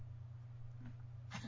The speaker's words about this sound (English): The dog's coughing well, now.